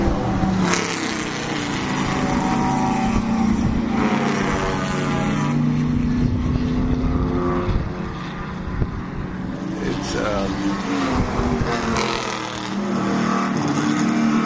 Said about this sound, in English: And you can make out the cars, some of the cars, by the color. I got binoculars I should bring, but yeah, great track.